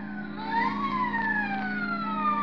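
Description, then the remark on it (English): A police prowl car siren wails continuously in Hollywood after midnight, its pitch sweeping up and then slowly gliding down over a steady low background hum, with no voices. “The nightclubs close up one by one, but now and then the police whistle and the prowl car siren serenade the sleeper.”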